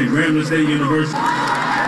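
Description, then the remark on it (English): A crowd of moms, dads and grandparents cheers and whoops together as graduates walk off a wooden stage at a high school's annual college signing day in Daly Plaza on a warm spring day, several voices shouting at once in a loud, sustained burst of celebration. “Moms, dads, grandparents jump and cheer.”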